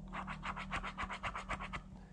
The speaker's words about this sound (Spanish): Y en este momento voy a usar un boli de tinta azul para cruzar el día.